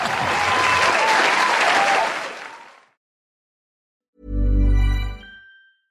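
A crowd breaks into loud, steady applause for a few seconds before it fades out, followed by a short silence and then a brief low, humming musical tone.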